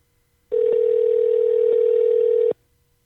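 A steady telephone dial tone hums at a single mid pitch for about two seconds while a call is being placed, loud and unbroken, then cuts off abruptly, with no talking over it.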